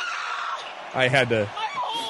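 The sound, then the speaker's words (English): A man lets out a short, strained scream lasting about half a second in a wrestling broadcast clip, cutting sharply through a steady wash of background noise before fading back into it. “I almost just did the my hole part, then I'm like, wait, that scream was so great.”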